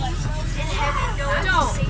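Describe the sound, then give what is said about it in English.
A steady low engine rumble fills the interior of a moving bus, with indistinct passenger chatter and murmuring voices layered over the drone throughout. “Now we will take a moment to listen to the sounds of the bus.”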